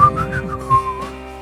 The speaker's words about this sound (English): Maybe whistle a little bit.